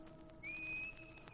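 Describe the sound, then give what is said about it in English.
A man demonstrates a whistled signal, a single sustained human whistle, a steady high-pitched tone that rises slightly then holds level for about a second before fading, heard over a low background hum with no talking. “When I come back, I'll stand in the dock and whistle. Like this.”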